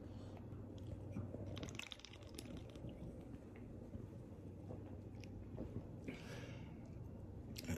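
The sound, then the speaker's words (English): Beer made with Rocky Mountain water pours steadily for several seconds, a continuous gurgle and splash of liquid filling a glass, with soft fizzing throughout and no voices. “It's good beer. That's Rocky Mountain water, right?”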